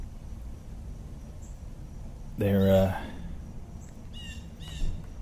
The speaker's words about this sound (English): Ooh, a bird.